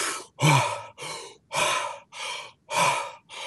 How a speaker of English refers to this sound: And now if you really want to do something rather remarkable, start breathing really deeply as fast as you can like this.